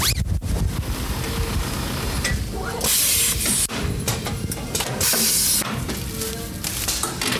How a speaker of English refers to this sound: We pulled them out, identified the gown for each student, and then we brought them back here, pulled them out of there, throw them through the steam tunnel, hand press them.